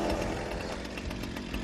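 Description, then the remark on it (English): Leatherface's chainsaw in a Texas Chainsaw Massacre film scene revs as he comes forward, blade not spinning: a harsh, buzzing snarl, holding loud and steady for under two seconds with slight pulsing surges and no voices over it. “I also like how the saw revs as it comes forward, but the blade's not spinning.”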